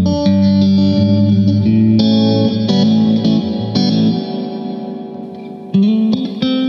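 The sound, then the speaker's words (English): Electric guitar chords ring out through a big plate reverb with the decay and blend turned up, each strum blooming into a dense, shimmering wash that lingers and slowly decays between hits, loud with no talking. “So if you start increasing the decay, the blend, getting into much bigger plate territory.”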